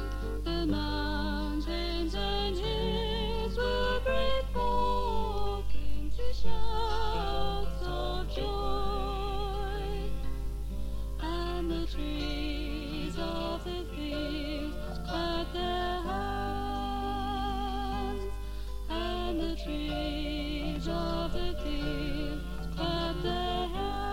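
A folk song plays steadily, a sung melody with vibrato carried over a sustained low drone and layered instruments, holding an even level for the whole stretch with no talking over it.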